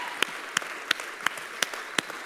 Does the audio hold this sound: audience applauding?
yes